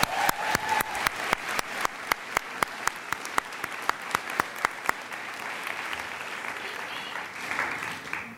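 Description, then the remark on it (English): An audience breaks into a round of applause for the people who supported the speaker's education: many hands clapping in a dense, crackling wash, with sharper steady claps standing out through the first five seconds before it settles into a softer, even patter. “Please join me in a round of applause for these folks.”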